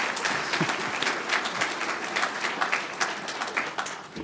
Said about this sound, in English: Could we give those members a round of applause, even if they are too shy?